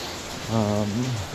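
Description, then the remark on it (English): Heavy rain pours down in a steady, dense hiss that fills the whole clip, with a brief voiced hum rising over it partway through. “Looks like it's raining pretty hard now.”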